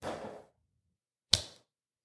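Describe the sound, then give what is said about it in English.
A brief rustling swish, a short pause, then one sharp slap of a hand against skin as someone swats at a fly and hits themselves, decaying quickly into silence. No one speaks. “I just slapped myself and still missed that fly.”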